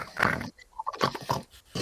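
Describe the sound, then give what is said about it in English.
A voice imitates snoring with a few rough, snorting, growly bursts in an uneven rhythm, separated by short pauses, moderately loud with no words spoken. “That's my snoring.”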